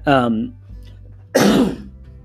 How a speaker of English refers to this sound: pardon my cough. I'm sick.